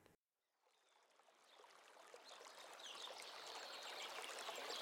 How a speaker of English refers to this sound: Woken by the sounds of the birds and flowing waters, Vishwamitra and the princes resumed their journey.